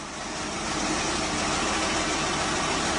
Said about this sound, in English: Well, the sound of a tractor being fired up, and that is what is going to happen in September.